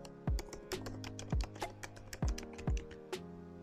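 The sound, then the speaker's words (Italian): Steady typing on a laptop keyboard at a desk, with quick clicking keystrokes and a few heavier thumps like the space bar, otherwise quiet. “L'ancora ha funzionato anche stavolta perché mi ritrovo a picchiettare sulla tastiera senza più fermarmi.”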